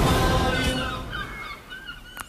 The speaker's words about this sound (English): I do get slightly teary-eyed and reminiscent every time I hear a seagull, because I was brought up on the Kent coast.